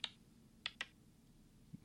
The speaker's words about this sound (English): I'm going to now use the sound feature on the Dice by Peacock app and roll.